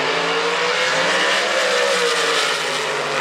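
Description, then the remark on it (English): A loud, sustained drag car burnout in the water box, heating the tires to make them smoky: tires squeal and roar continuously under a droning high-revving engine, steady for the whole few seconds, with no voices. “Let's put it in the water box and get them nice and smoky.”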